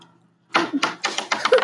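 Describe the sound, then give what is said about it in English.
A red twenty-sided die tumbles across a tabletop after a brief silence, giving a quick series of hard clacks and rattles that bounce unevenly before it settles. “And which dice is it? You, the red one. Red one. 20 side dice.”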